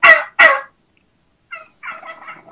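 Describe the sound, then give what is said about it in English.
Two loud, high-pitched wild turkey hen yelps ring out, followed after a pause by softer, lower, drawn-out clucking calls from a dominant hen. “There's the high pitch.”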